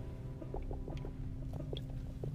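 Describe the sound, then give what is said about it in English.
Someone sips a pre-workout drink, making a string of small wet clicks and slurpy gulps at an uneven pace over a steady low hum, with no talking. “Hold on, take a sip of pre-workout.”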